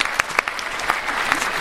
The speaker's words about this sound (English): We were clapping ourselves. It's pretty lame.